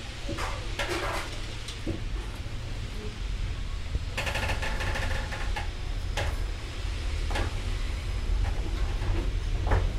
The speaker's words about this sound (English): It's 8:59, our scheduled departure time. All the passengers are aboard and in their seats. We hear the engines whistle. And slowly, with a hiss of steam, we start to pull out of Paddington Station.